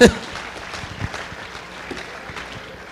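An audience claps steadily for about three seconds, a dense crackle of many hands that starts with a sharp burst and then holds at an even, moderate level.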